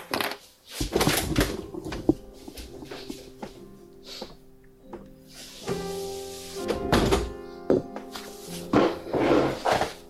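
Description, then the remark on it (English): Someone fetches a glass of water in a kitchen: a cupboard knocks open and shut, a glass clinks, and a brief run of water is followed by scattered thunks and clatter, with no talking. “Actually, I'm going to get a glass of water. Be back in a sec.”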